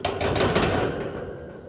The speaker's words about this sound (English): Jefferson began pounding on the metal door.